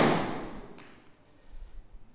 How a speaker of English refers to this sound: So if you don't like balloons being popped, then cover your ears.